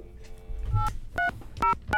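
Four short telephone keypad tones beep in an uneven rhythm as a guest is dialled in for Brooklyn Paper Radio, each a steady two-pitch electronic chirp, over a low background rumble with no talking.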